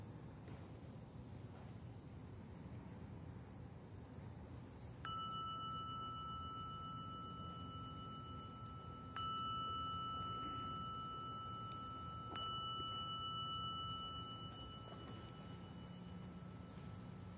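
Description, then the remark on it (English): A meditation gong is struck three times a few seconds apart, each clear metallic tone overlapping and ringing out over a low, steady background rumble. “Sensing that when you hear the sounding of the gong, that you can bring this relaxed attentiveness into a continued listening.”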